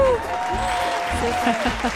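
Steady, dense applause from an audience after a performance, a continuous wash of clapping with some vocal cheering mixed in, fairly loud throughout.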